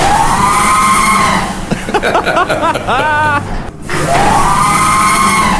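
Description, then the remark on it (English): A convenience store sliding door screeches loudly, a sustained high-pitched squeal that swoops up and down, breaking into a warbling, chirpy stretch midway before the long sweeping screech returns. “So this is a sliding door at a convenience store.”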